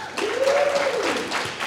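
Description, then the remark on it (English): Audience applause voting for a tome of dark rituals, a dense, steady patter of many hands clapping for under two seconds, with one sustained cheer swelling up and falling away in the middle. “By your applause, a tome of dark rituals.”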